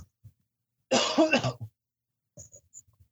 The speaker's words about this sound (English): Sorry about that. I had to cough and couldn't find my mute button.